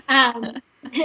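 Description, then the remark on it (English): A loud burp after chugging a drink rumbles out for a moment, followed by a few shorter voiced grunts and a brief pause before another throaty burst. “Sorry, I'm like burping. I just chugged this.”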